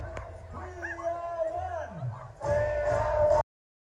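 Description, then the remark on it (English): A huge crowd of thousands at the Freedom Rally protest in Canberra, Australia, cheers and shouts, with whoops and raised voices blending into a dense roar that surges louder partway through, then cuts off abruptly. “Huge crowd in Canberra, Australia. Thousands and thousands and thousands.”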